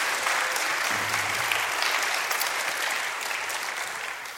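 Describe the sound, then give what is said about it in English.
An audience claps steadily, a dense, even wash of many hands with no voices on top, holding at a consistent loudness and easing off slightly near the end, welcoming a church elders' board chairman and university Genesis teacher as he comes up. “Give him a round of applause as he comes.”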